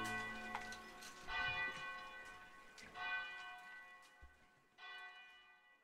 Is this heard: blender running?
no